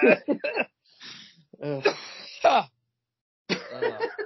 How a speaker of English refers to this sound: Sorry, I'm coughing. Trying to make out like it's a laugh.